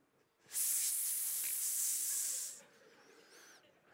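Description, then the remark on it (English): A loud, sustained snake hiss lasting about two seconds, starting abruptly and then cutting off, leaving a quieter airy background with faint chirps. “But then, a snake shows up with a lie.”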